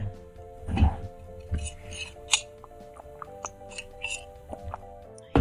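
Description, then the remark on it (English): Someone swallows a sip of coffee, with a few soft gulps, wet mouth clicks and a light clink over a steady low hum. Nobody speaks. “Even my own swallowing. It's bothersome.”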